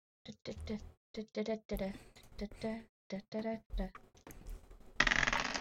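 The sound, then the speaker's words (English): A person talks for several seconds, then two six-sided dice clatter and rattle across a table in a short, noisy burst at the very end, rolled during a tabletop role-playing game for a total of 9. “Dice.”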